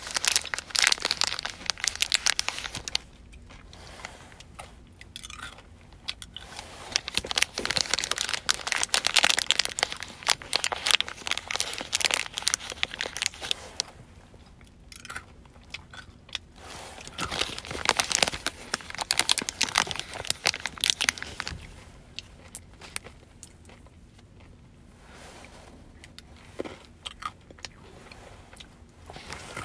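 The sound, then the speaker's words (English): Loud crunching of M&M candies chewed right at the microphone, crackly chewing bursts in several long stretches separated by quieter pauses, with no talking. “My brainstorm, I mean, I'm gonna crunch M&Ms in my own ear.”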